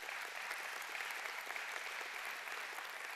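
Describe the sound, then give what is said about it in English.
A church audience applauds steadily, a dense wash of many hands clapping at an even, loud level that holds without a break for the whole few seconds, with no voices standing out, in honour of members who learned sign language to serve hard-of-hearing worshippers. “And in fact, would you do me a favor this morning and applaud those people who have done that?”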